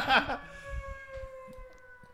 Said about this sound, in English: We're letting the siren really do its thing.